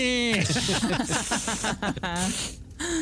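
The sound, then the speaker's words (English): A person imitates an agitated cat, mixing breathy hisses with strained, wavering growls and yowls in a loud burst lasting a few seconds. “It's like as you're kicking the door and going in, the cat, like, makes those guttural, weird, scary cat sounds. Could you like, could you, hear could you maybe hit, do that for me”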